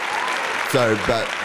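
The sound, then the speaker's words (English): A crowd gives a double clap for two studio workers, two sharp collective claps landing about a third of a second apart over steady applause, while voices call out. “They deserve a double clap.”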